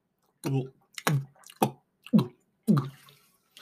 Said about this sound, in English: You're going to get some water drinking. Yeah, ASMR. I'm going to drink some water. Drink some water, ASMR.